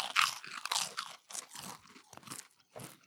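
crunching on a chip

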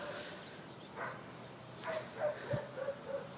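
dog barking

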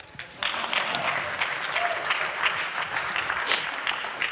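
audience applause

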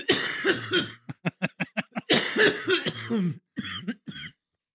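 man coughing

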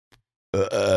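burp

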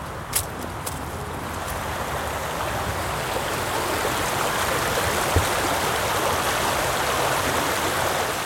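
river water flowing

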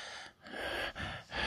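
heavy breathing

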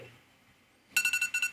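buzzer sound effect

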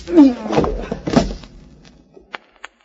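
punch to the jaw

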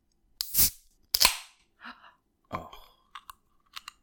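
beer can being opened

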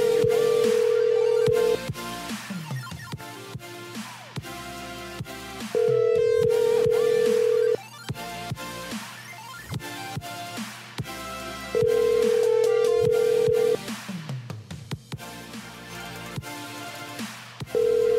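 telephone ringing unanswered

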